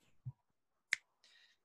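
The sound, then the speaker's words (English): Dice being rolled to make a random choice: a soft low thud, then a single sharp click, followed by a brief higher-pitched rattle, all fairly quiet with no talking. “I am going to roll a dice, and that will be the one.”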